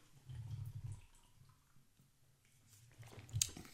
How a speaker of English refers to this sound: Gulp of beer for the working man.